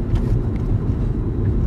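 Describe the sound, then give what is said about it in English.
A steady, loud low rumble from a moving car, with a continuous grinding scrape of the car's bumper dragging on the ground underneath. No one speaks. “I think your bumper's on the ground again, babe.”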